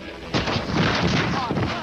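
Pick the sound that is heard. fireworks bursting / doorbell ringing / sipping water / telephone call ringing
fireworks bursting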